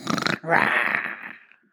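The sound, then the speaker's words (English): A voice imitates a monster while reading a children's book aloud: a quick rough snort followed by a longer throaty growl that fades out, fairly loud, with no other talking. “If you're a monster and you know it, snort and growl.”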